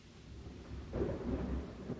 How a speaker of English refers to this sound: Fortunately, the thunder filled the silence well enough.